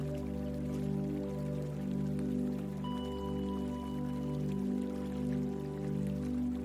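Steady trickling and splashing of running water from a water fountain, continuous, layered over a low, sustained humming drone with no voices.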